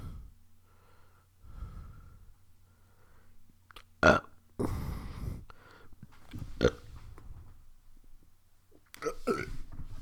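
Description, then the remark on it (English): A series of loud burps, some short and some drawn out and rumbling, spaced irregularly with breathy sounds between them over a faint low hum. “I'm burping like a motherfucker.”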